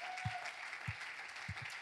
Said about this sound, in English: Let's give the Lord a big hand clap of praise.